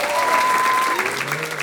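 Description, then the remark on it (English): A comedy special audience, asked to clap if they are in a relationship, claps steadily, a dense patter of many hands lasting the whole moment, with a few thin whistles or whoops sliding over the top. “If you're in a relationship right now, clap your hands.”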